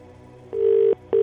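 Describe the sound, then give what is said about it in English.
A steady electronic ringback tone sounds in long bursts separated by a short pause, on an outgoing phone call from a radio station to a competition entrant waiting to be answered; the tone is clear and fairly loud, with no voices. “3 rings.”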